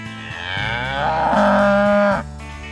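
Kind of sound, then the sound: animal, cow mooing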